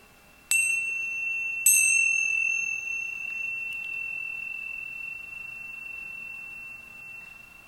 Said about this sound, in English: I'm going to sound our chimes today in 30 seconds of silence, and then I'll offer a prayer from my heart.